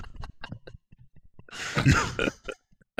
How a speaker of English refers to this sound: I was clearing my throat because I clearly was about to say dark English.